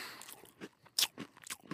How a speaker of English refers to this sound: I can bite part of one pretzel, then bite the side of another pretzel, and then I hook them together, and I can count that as one pretzel. Mmm. Boy, that was good.